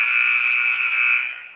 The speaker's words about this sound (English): As the buzzer is going berserk right about now, another substitution.